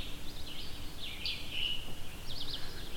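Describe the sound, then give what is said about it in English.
Faint birdsong of red-eyed vireos and scarlet tanagers recorded outdoors in the field: short warbled phrases and chirps repeating every second or so over a steady outdoor hiss with a soft cicada drone, no voices. “As you can hear right now, I'm surrounded by birds. Red-eyed vireos, scarlet tanagers here as well.”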